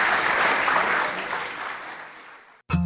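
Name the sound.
audience applause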